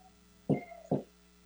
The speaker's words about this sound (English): Just knocking on my door there to get my daughter to settle down.